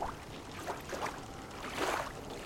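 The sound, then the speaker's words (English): Small waves lap softly at the edge of a lake, a few gentle splashy washes at uneven intervals over a low, steady hiss, with one fuller slosh near the end. “No, just the sound of the little waves.”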